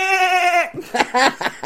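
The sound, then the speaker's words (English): A sheep lets out a loud, sustained bleat, then follows it with a few shorter, rougher bleats in quick succession. “And it's close-ups of startled sheep ahoy”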